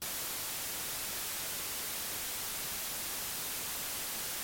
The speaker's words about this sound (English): We hit the limits of that system so quickly, we don't really get close to approaching the kind of consistency, uniformity, and speed, so fast it is still, that we associate with traditional white noise.